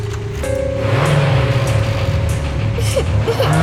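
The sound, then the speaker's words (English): A truck's engine roars, its low rumble climbing in pitch as it revs and pulls away, loud and continuous for a few seconds with no voices. “Drive the truck straight off the edge of the skyscraper.”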